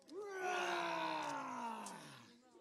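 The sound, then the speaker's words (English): A group of voices lets out one last long, loud imitation lion roar together on a count of three, a sustained growling cry that rises quickly, holds for about two seconds, then trails off. “All right, one last big roar, and then we'll let them go, okay, because I think they've had enough.”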